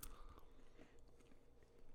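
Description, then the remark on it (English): Munching on a small piece of walnut that was rinsed of salt, with crunchy bites and steady chewing sounds at the mic, fairly quiet and continuous with no talking. “Sorry for any munching sound in the mic.”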